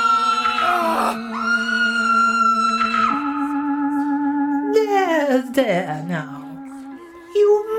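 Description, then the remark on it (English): A dog howls in long, sustained, wavering tones that slide up and down in pitch, fairly loud, with a few shorter yelping breaks near the end. “Afraid of the dog? After all, it isn't afraid of you.”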